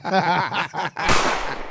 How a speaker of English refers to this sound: Damn, that was perfect gunshot. That gunshot was kind of that was shit. Perfect. That was perfect.